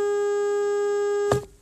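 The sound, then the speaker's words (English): A Peugeot e-208 car horn held down for three seconds as a beep test, one long, steady, buzzy blast with rich harmonics, ending abruptly with a brief noisy burst as it releases. No one speaks. “So here's beep. Here's beep, beep. And here's sitting on the horn for 3 seconds.”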